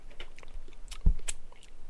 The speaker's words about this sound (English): Enough of me chewing in everybody's ear. Enough of that. I know y'all got sick of it.